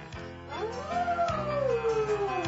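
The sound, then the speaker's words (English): A dog howls along to steady background music in long, wavering, rising and falling tones, the howl loud, sliding up and then gradually descending. “This is the Pachelbel Cannibal. Yeah, it's the Beanie dogs. The dog.”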